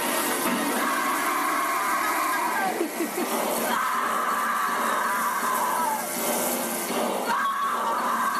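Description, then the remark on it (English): A loud, sustained scream from a movie's final scene rises and falls in long wails over a continuous rough, buzzing drone, a voice imitating a revving chainsaw, all intense for several seconds. “the last shot of this movie is Stretch holding the chainsaw up on this mini-golf mountain, swirling it around, kind of sexy, where she's like, "Ah, can we play the scream, the final scream, and I'll do the chainsaw for you?"”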